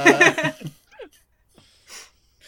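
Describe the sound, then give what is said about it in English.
Heavy, exasperated breathing: a loud voiced, groaning exhale at first, then a few quieter wheezy breaths spaced apart in near-silence. “Exasperated breathing.”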